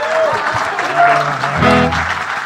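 A crowd claps steadily in a dense, continuous wash of applause, with a few tonal notes and a low hum rising briefly beneath it midway.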